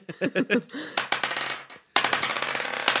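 A clatter of many dice dropping and scattering: a few bouncing taps at first, then a dense rattling cascade that pauses briefly and surges again, fairly loud.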